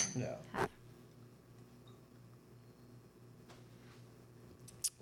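Glasses clink together in a toast: a single short, bright ring near the end, after an earlier soft knock, over a quiet background hum.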